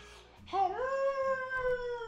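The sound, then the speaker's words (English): A person imitates a wolf howl: one long, loud wail that swoops upward, then holds a steady pitch for over a second, slowly wavering, with no talking around it. “Mate, out comes the real wolf.”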